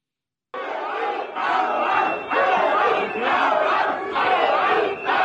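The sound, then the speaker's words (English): A large crowd of protesting farmers and dissatisfied citizens shouts loudly in unison at German food and agriculture minister Cem Özdemir on a Tuesday night, the roar swelling in rhythmic, chant-like bursts roughly once a second, with brief dips between them, after a moment of silence at the start. “And while they're shouting at him here in this footage”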